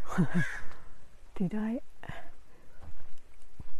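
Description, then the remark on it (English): A crow caws in a few harsh, raspy bursts: a quick pair at first, then a longer drawn-out call a second later, loud against a quiet outdoor background, in the crow's nesting territory. “Came to the territory of the crow, the crow's baby house.”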